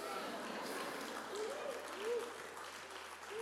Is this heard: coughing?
no